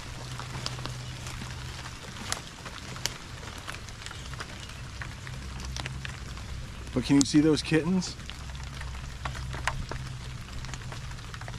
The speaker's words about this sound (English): There's a basketball hoop and a mom cat had her kittens there a couple days ago, maybe, but it's like really raining.